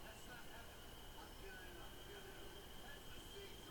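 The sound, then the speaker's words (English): A C line subway train rumbles steadily past, a dense low roar with faint metallic whines riding on top, fairly loud and continuous for the whole stretch, with indistinct voices buried in the noise. “Oh, C train.”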